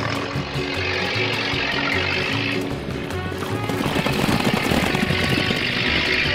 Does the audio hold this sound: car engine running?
yes